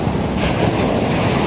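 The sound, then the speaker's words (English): Steady ocean surf washes continuously with a broad rushing hiss, mixed with gusty wind buffeting the microphone; recorded by someone who is in the water; no one speaks. “I'm in the water right now.”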